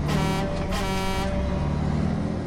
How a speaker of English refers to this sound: Then, somewhere in the distance, came the blast of a logging truck's engine.